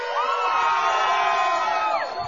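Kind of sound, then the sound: crowd, crowd cheering and whooping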